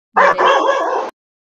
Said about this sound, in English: Oh yeah. And the dog. Yes. And the doggies. We love the doggies.